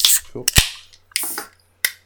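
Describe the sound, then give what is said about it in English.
Cans of beer from the Siren brewery being cracked open, a series of sharp metallic pops, each followed by a brief fizzing hiss, spaced out over a couple of seconds with no talking. “But let's crack these open and let's see what Siren can do on take number two.”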